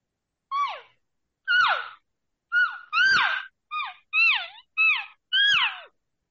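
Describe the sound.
Eight short, high, nasal mews imitating an elk calf call, a light cow call, each sliding downward in pitch, spaced about evenly over several seconds with no talking in between.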